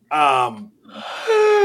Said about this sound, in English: bless you.